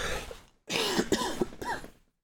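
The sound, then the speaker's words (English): A person coughs: a brief rough cough, a short pause, then a longer, raspy bout of several hacking coughs with a hoarse, throaty edge. No talking. “Excuse me, I have to cough again.”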